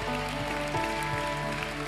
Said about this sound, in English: If you receive it today, why don't we give the Lord a great, victorious clap of it.